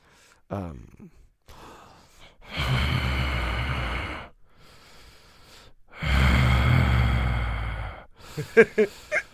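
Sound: voice imitating a horse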